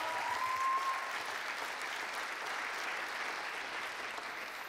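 An audience in Montreal, Canada, in 2016 claps hands for Jesus in the evening, a steady, dense wash of applause that holds at an even level throughout, with no voices rising above it.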